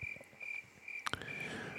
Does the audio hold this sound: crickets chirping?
yes